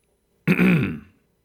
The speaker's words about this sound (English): Clearing your throat. Clearing your throat.